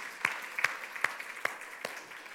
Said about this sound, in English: To me, that's amazing, and I applaud you. Give yourself a hand for such a great job.